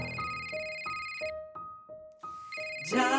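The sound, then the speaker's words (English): A phone ringtone plays a repeating two-note electronic melody, alternating high and low tones in a steady rhythm, fairly loud, with a brief noisy burst at the end. “Daddy's on the phone. I'll take it.”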